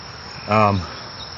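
A single loud, buzzy frog croak rises over a steady outdoor chorus of trilling frogs on a trail at Wakefield Park in light rain, lasting about a third of a second before the background hum resumes alone.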